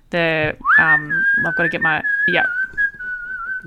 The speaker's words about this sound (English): we didn't stop whistling in our house for the weeks and weeks after we watched Kill Bill again